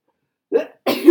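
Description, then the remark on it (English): A sneeze: a short breathy intake followed by a sharper, louder, noisy burst, heard on its own without any talking. “Bless you.”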